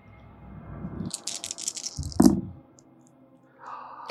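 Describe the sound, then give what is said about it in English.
Dice rattle briskly in a hand or cup for about a second, then land with a sharp clack, followed by a soft hiss and faint rustling. The dice are rolled for a manipulation plus subterfuge roll at difficulty 7, giving one success. “Roll me a manipulation plus subterfuge.”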